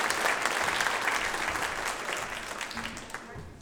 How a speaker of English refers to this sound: All right, so applause for our incoming.